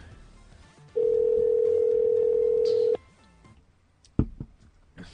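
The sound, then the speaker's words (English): A loud, steady telephone dial tone hums for about two seconds after the other caller hangs up and the line disconnects, then cuts off, followed by a sharp click and faint background noise. “That's weird that he hung up like that.”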